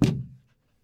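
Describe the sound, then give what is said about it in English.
A single heavy knock from a very large door knocker on a very large door at the foot of a tall building, a deep resonant thud that booms briefly and fades within half a second, with no other sound around it. “And it's got a very large door at the foot of it with like a very large door knocker.”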